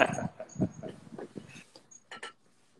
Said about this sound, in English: Oh, here goes my dog. Okay. Gotcha. Hey, Sonny. Hey, puppy. Hey.